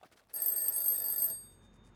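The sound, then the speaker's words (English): A telephone bell rings once early in the morning, a bright, metallic burst lasting about a second before cutting off and fading into quiet. Nobody speaks. “Mike's phone rang early the next morning, waking him from a dead sleep.”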